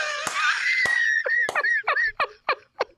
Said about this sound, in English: Sorry, I'm screaming. I'm going to calm down real quick.